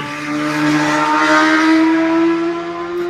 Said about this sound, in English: Here comes the motorcycle.